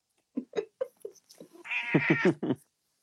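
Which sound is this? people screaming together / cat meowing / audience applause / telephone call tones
cat meowing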